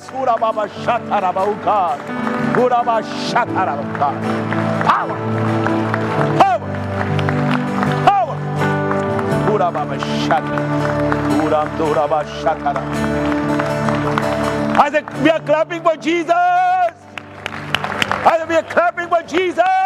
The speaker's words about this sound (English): I know we have a service here. I want you to just clap for Jesus. Just clap for Jesus. Clap for Jesus. And clap for Jesus. And clap for Jesus. Clap for Jesus.